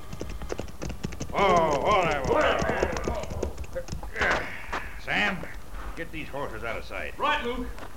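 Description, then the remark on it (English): Rapid hoofbeats of galloping horses ridden by men clatter steadily throughout, a continuous rhythmic drumming mixed with men's voices talking and calling over the top. “Then we'll get our guns and our horses and ride to help Senor Maxwell”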